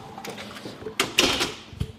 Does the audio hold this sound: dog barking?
no